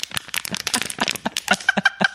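A rapid, irregular series of dry crunching noises, played back from a recording made by the Snorlab sleep-recording app, a dozen or more crisp bursts packed into about two seconds, with a faint steady tone appearing toward the end. No one speaks.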